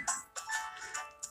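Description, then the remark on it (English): A doorbell at a house in the Alola region rings with a quick run of bright electronic chime tones, several notes rising and falling in succession, announcing Professor Kukui. Heard alone without any voices. “Was that the doorbell?”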